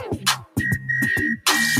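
A shrill, steady whistle tone cuts through a loud, thumping hip-hop beat, held in long blasts between punchy bass and drum hits.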